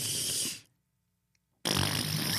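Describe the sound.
Someone blows a loud, spluttering raspberry imitating a fart, then goes quiet for about a second before a second noisy, buzzing burst follows, loud with no talking.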